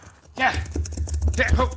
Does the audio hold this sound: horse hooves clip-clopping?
yes